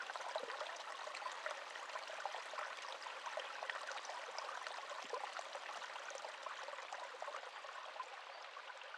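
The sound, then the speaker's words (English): A steady stream burbles and trickles over rocks in alpine country above the tree line where snow gums grow, a continuous bright babble of running water with small splashes throughout and no voices. “Up above the tree line where the snow gums grow and the pandanis gather, up here there is the sound of bubbles and a bubbling country and a place that doesn't feel permanent.”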